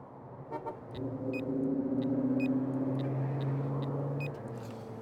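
A BMW car drives by with a steady, droning engine hum that swells, holds for a few seconds, then eases off, with faint high chirps over the road noise and no voices.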